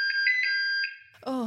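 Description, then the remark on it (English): An electronic phone ringtone sounds for about a second, a steady high-pitched tone with a gently pulsing warble, then cuts off as a voice starts speaking. “And if you need a reminder, and this will haunt your dreams, because I've thought about it nonstop, it sounds a little something like this.”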